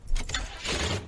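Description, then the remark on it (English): A short burst of rattling, jangling keys over a low rumble as a car engine turns over, fairly loud, with no voices. “Start the fucking car.”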